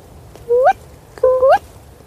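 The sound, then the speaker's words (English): A voice imitates a female owl's call twice, each a short, shrill, upward-sliding cry, clear, with a brief pause between them and no talking. “So the males do the... Ooh, ooh. That's not an owl, is it? It's a ghost. Can you do the female?”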